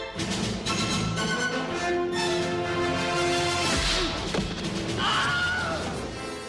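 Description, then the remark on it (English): The Wilhelm scream, a brief, piercing yelp that rises and falls in pitch, bursts out over a loud action-movie mix of sustained music and a heavy crash. “So the next time you're watching an action flick, listen for the Wilhelm scream.”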